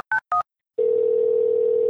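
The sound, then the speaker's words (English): Two quick telephone keypad beeps, each a short dual-pitched tone, followed after a brief pause by a steady, loud dial tone humming on to the end. “I'm going to play these 341 tones I got last night.”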